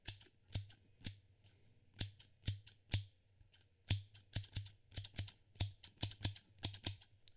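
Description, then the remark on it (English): Scissors snipping in quick irregular bursts, sharp crisp metallic clicks repeating over several seconds, with a low steady hum underneath and no talking. “But anyway, let's get back to some ASMR. Let's get some scissors.”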